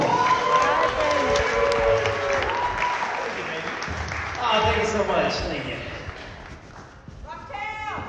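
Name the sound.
audience applause and cheering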